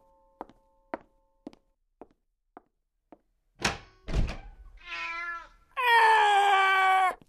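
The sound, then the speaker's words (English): A series of sharp knocks slows to a stop, a door thuds open to the mailman, then a cat called Mr. Cat jumps at him, letting out a short wail followed by a loud, drawn-out yowl. No one speaks. “I think Mr. Cat scared him when he jumped at him.”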